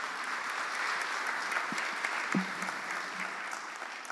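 An audience applauds steadily, a dense wash of many hands clapping at a moderate distance, sustained evenly throughout with a few brief murmurs underneath.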